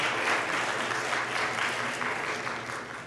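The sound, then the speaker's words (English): An audience at an adult education lecture in Orange County applauds steadily, a dense wash of many hands clapping at once, loud and sustained throughout before easing slightly at the end. “So we're going to clap you to the air.”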